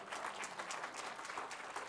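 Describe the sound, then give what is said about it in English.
An audience claps together in praise of the Lord, a dense, steady wash of many hands applauding with bright, crackling texture and no words spoken throughout. “Come on, you can praise the Lord and clap for a moment because it's true.”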